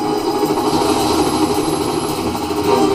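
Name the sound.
helicopter flying overhead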